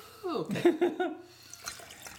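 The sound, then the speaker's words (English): Ice rattling and liquid sloshing as a cocktail is chilled with lots of extra ice before being strained, a quick cluster of wet clinks lasting about a second before quieter rustling trails off. “So we're just going to try to chill the hell out of it with all of this extra ice.”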